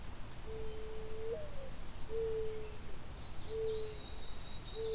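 A mourning dove's soft, hollow cooing repeats in slow, drawn-out notes, the first rising slightly, over a steady background hiss with faint higher bird chatter later.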